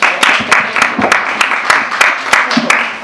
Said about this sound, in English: Let's please give a warm round of applause.